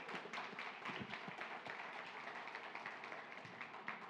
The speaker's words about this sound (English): Round of applause for these readers. Come on.